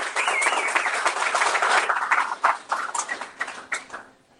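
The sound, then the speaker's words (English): Audience applause: a dense burst of many hands clapping that thins into scattered individual claps before fading out after about four seconds. No voices are heard. “Once again, give him a round of applause.”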